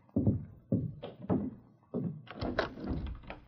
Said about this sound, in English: The door. I'll see who it is.